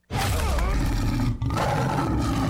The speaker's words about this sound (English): What a great tiger.